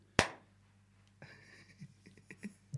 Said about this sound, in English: Okay, right, I'll do a little clap.